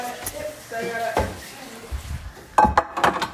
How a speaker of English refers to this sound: I'm being a nice friend and I'm cleaning dishes because I can't handle when dishes are not clean.